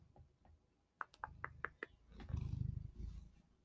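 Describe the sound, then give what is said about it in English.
A pet cat on a person's lap, pawing: a quick series of sharp ticking taps, then a loud, low, rumbling purr-like growl that swells for about a second before fading. No one speaks. “Cat ASMR.”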